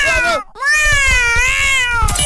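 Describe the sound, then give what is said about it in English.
A cat meows loudly: a short meow followed by a long, drawn-out, wavering yowl, with faint low thumps underneath. “What about a crazy cat with one crazy guy in a studio, though?”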